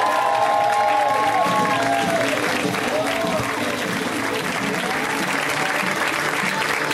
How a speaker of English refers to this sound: Hilarious comic coming up. We love her on the show. Please, a round of applause for Miss Eliza Skinner. Guys, give it up for Eliza.